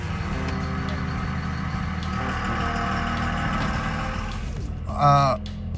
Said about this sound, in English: Why are diesel trucks' engines so loud?